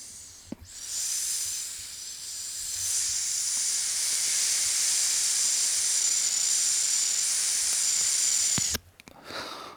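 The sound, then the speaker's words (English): A long, steady airy hiss of someone drawing on a cartridge vape pen, lasting about eight seconds before cutting off abruptly. No one speaks. “I'm hitting one of those pens too.”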